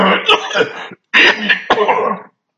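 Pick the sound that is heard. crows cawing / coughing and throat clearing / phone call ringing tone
coughing and throat clearing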